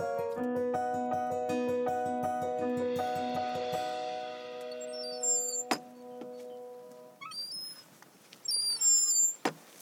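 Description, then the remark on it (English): A squeaky kissing gate on the Cumbria Way, by the wooded western shore of a lake near Coniston Old Hall, swings open with a long, wavering metallic squeal lasting several seconds, then clanks shut. Faint outdoor birdsong chirps in the background afterward. “That's a squeaky kissing gate”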